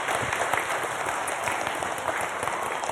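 Sustained audience applause for a group of women, a dense steady wash of many hands clapping at once, fairly loud, with no voices standing out.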